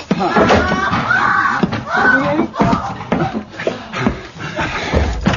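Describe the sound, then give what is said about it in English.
Heavy, irregular thuds of someone pounding on the locked and bolted door of a room, loud, repeating over several seconds while agitated voices shout underneath. “Monsieur, the door of the room is locked and bolted. It will take too long to burst it open.”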